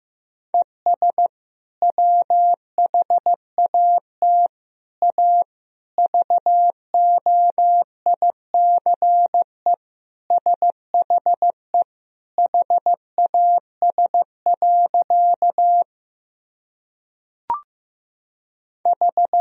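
A steady, single-pitched Morse code tone keys out practice sentences built from the top 500 words and abbreviations, at a moderate 15 words per minute. It plays alone and clear, with brief pauses between words and a single click near the end.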